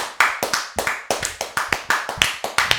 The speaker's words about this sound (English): I'm gonna edit those claps out. 100%. I'm editing those claps out.